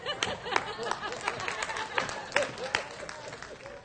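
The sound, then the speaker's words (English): Scattered audience clapping, many of the clappers women, a loose patter of sharp claps at irregular intervals over a low murmur of crowd voices and a few chuckles, moderately quiet overall. “I see a lot of ladies clapping out there.”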